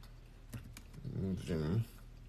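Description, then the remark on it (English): A few quick, light keyboard taps click, then a person starts talking over the last of them. “I'm typing this in right now.”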